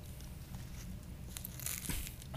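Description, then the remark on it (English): Crunching from a bite of a Cheeto sandwich cut into fourths: crackly chewing crunches that build to louder bursts near the end, with no talking. “Make sure you crunch it good,”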